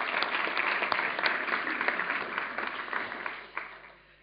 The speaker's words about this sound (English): why don't we give them a round of applause, these guys. Thank you.